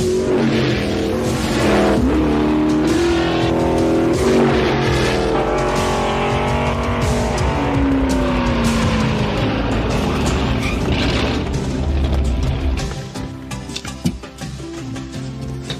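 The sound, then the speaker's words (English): A race car engine roars at high revs as the car is driven hard through a tunnel turn, way out of shape, its pitch sweeping up and down through gear changes and cornering, with tires squealing loudly before the sound drops off near the end. “You all lucky in that tunnel turn, because that car was way out of shape.”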